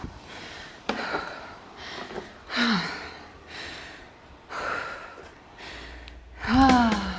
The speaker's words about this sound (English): We're breathing.